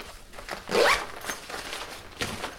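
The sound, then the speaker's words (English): Zips being pulled while packing, a series of quick rasping strokes with one longer, louder pull early on, followed by shorter tugs; no one speaks. “But I did think I'd do some packing noises, which might come in useful later. So get ready for some zips.”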